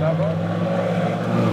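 A boat engine drones steadily on the Dead Sea during a boat tour in a border zone shared by Israel and Jordan, a constant low hum with harmonic tones and a faint wash of wind and spray throughout.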